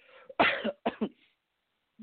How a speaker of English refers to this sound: Why are you coughing, though? Why are you coughing? I think I got it from the TV.